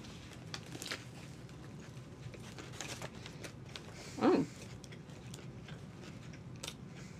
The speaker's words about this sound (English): All right, please forgive us for our chewing.